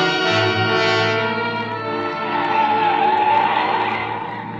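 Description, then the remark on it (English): Tires screech loudly and continuously as a car, not slowing down, skids and swerves crazily from one side of a highway to the other across a landslide on the road. The harsh squeal wavers in pitch over a low engine rumble, sustained throughout. “He didn't slow down, and the car swerved crazily as it slipped from one side of the highway to the other.”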